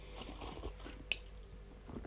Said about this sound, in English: But, sorry, I'm just taking a swig of beer there. And now I'm dripping it everywhere. Damn.